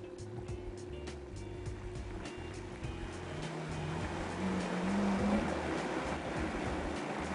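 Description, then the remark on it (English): A blender motor runs steadily with a low churning hum, starting slow, then growing slightly louder and rougher midway as tomato juice is mixed into already blended ingredients; no one speaks over the continuous whir. “Okay, so I have blended most of my ingredients. I usually hold back on the tomato juice for last, so we're going to go ahead and add that.”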